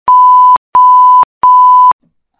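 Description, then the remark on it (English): Three steady electronic beeps, each about half a second long, evenly spaced with short gaps between them, loud and clear with a pure mid-pitched tone and nothing else in the background. “Beeps, why can't I hear?”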